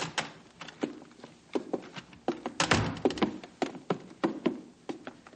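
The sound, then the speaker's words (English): Two visitors, a judge and a woman, walking in through an open door, their footsteps making irregular taps and thumps with a brief louder shuffle partway through, and no talking. “Come in, please. The door's open.”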